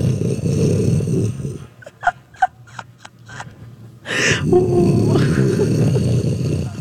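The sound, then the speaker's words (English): A voice imitates the deep, rumbling snore of a person heard snoring through the floor, loud, breaking off into a few short clicking breaths before launching into another long, heavy rumble. “That is an intensity of snoring that none have heard. And it was a wave.”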